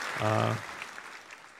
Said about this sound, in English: We're going to go ahead and give him a little round of applause there.